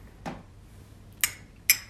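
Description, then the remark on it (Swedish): Two bright glass clinks in a toast, about half a second apart, each ringing briefly with a high, bell-like tone, preceded by a soft dull knock, with no one speaking. “Skålar vi för det då innan det vi avslutar?”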